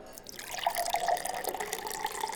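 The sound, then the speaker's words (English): White Spire wine pours steadily into a glass at the Silken Fairy tavern for a couple of seconds, a continuous gurgling trickle whose pitch rises slightly as the glass fills, with no voices. “I would be enchanted if you could pour me some White Spire wine.”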